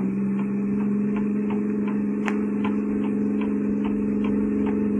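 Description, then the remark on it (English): A steady, droning car engine hum runs throughout as the car drives on a road going up to Laurel Canyon, with a low mechanical rumble and faint regular ticks. No voices are heard. “Please let me out of this car.”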